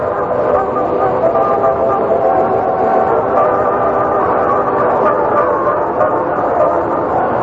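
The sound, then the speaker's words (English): A loud, dense chorus of dogs barking and yipping together in a dog food commercial, the barks overlapping into a steady, unbroken clamor that holds at the same level throughout, with no one speaking. “Your host now is Joy, nature's high-protein food for dogs.”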